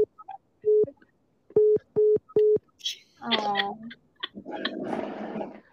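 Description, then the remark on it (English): A female pet parrot imitates electronic beeps: four short, steady mid-pitched tones, the last three in a quick even rhythm, then a burst of raspy, warbling squawks and chatter. “All those beeps of my bird. Yeah, I have a parrot right behind me, and she's going crazy.”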